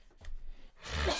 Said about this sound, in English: Bless you. God bless you.